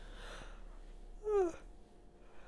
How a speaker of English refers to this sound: Not me yawning, y'all.